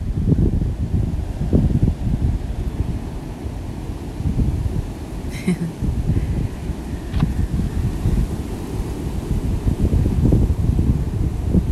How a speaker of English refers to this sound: I don't know if you can hear like just the breeze. That's the water. Waves crashing and the breeze flowing through the palm leaves.